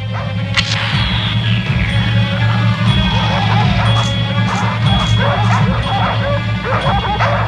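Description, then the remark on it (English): Several dogs bark and yip in a loud, frantic, overlapping chorus that keeps going throughout, with a falling whistle-like sweep near the start. “Holy barking bow-wows! Dogs or no dogs, I have to check that tank out fast.”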